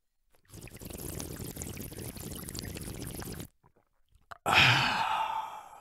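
A noisy slurping sip of water lasts a few seconds, then after a brief pause comes a satisfied breathy exhale. No one speaks.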